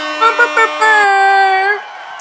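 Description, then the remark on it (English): A DJ's bomb sound effect: three quick, loud, buzzy tonal stabs followed by a long sustained note that swells slightly in pitch before cutting off, with no talking over it. “Drop one of …'s bombs.”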